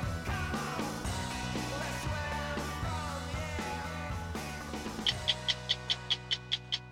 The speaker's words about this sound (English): For 50 years, that ticking sound has meant one thing, 60 Minutes on CBS.